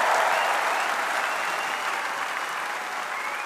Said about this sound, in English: And there was thunderous applause that went on for a good 5 minutes after Mr. Corbyn got himself onto the podium. Might we bring this conference to order? The Labour leader seemed to be almost wheedling with his fans to shut up after a while.